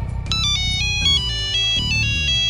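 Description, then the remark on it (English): A phone ringtone plays a bright, melodic electronic tune, its short phrases repeating steadily over a low background hum with no one speaking. “The ringtone was closer still and coming from over Zap's head.”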